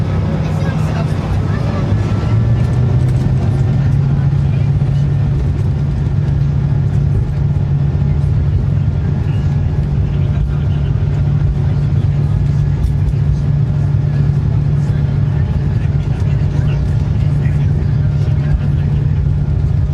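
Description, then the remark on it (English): Airliner engines roar steadily during takeoff, heard from inside the cabin at a seat far from the window: a dense, muffled low rumble with a humming tone that climbs in pitch early on, then holds as a constant drone. “But let's listen to how quiet the engines are at takeoff.”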